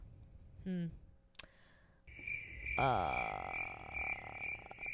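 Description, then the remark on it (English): A steady, high-pitched cricket chirping starts after a short pause and carries on continuously to the end, preceded by a brief vocal sound and a sharp click. “Insert crickets here.”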